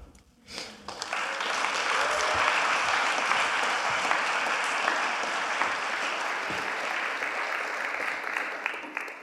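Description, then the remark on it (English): An audience at a fellowship gathering bursts into applause after a brief pause, the clapping dense, steady and sustained at an even volume for several seconds without voices. “Guys, before I forget real quick, we have another fellowship that's doing service right up here, and we're interrupting when we clap.”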